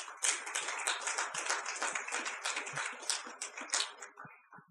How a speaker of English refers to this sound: Let's give God a clap offering tonight.